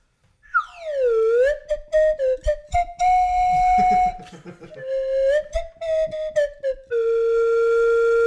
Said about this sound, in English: We really got to put some slide whistle into that song. Oh, just overdub it. One slide whistle to take us out.